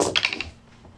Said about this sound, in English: Go ahead and roll damage. I am rolling 9 dice.